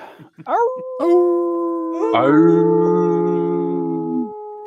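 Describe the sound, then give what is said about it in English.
Several voices imitate a wolf, launching into long, sustained howls that rise and hold in loose overlapping pitches, loud, ending together after a few seconds. “Oh, we should really try to harmonize that. Wolf. How the hell do you harmonize that?”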